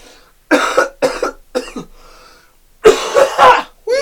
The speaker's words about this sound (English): Some kind of cough going around, everyone. Sorry. Some kind of cough.